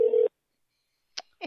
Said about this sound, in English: It's ringing, though. It's not going to voicemail.